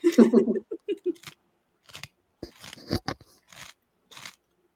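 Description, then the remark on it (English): Crisp crunching as someone bites and chews beer cheese flavored Lay's potato chips, a quick run of crackly bites followed by scattered sharper crunches with short pauses between them. “Actually, I got to flip my mic up so you don't hear me crunching too loud.”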